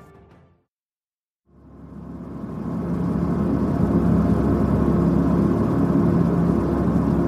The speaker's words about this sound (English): It's November 3rd, 2022, and I'm on a small 12-seater plane flown by the local Nepalese carrier, Summit Air. My flight time today, 18 minutes.